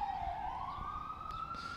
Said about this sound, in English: Ambulance is going by.